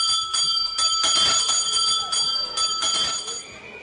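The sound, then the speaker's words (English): A school's morning tea bell in Porirua, north of Wellington, rings continuously and loudly, a bright metallic clamour sustained for several seconds with a rapid, rattling pulse, against faint background noise. “As the morning tea bell tolls at Te Kura Māori o Porirua, north of Wellington, hundreds of future kai kōrero and kai karanga take to the playground.”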